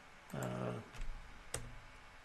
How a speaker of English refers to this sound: Go down to the bottom here. Oops. And, sorry, I'm clicking the wrong buttons here.